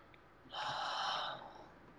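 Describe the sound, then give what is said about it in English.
A single loud, breathy exhale blows into the microphone for under a second, noisy and airy, then trails off into quiet room tone. “Oh, I love it when they start breathing.”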